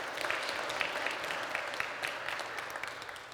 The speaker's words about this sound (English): There was something about that that was beautiful, so you should give your church a hand, an applause.